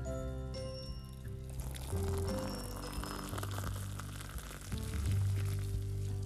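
Hot water is poured into a cup of Nescafé for the first coffee of the morning, a steady, splashing stream, fairly loud, continuing for about six seconds with no voices.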